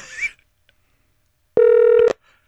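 A single loud electronic phone ring tone sounds for about half a second after a near-silent pause, as an outgoing phone call rings through on the line, preceded by a brief faint noise.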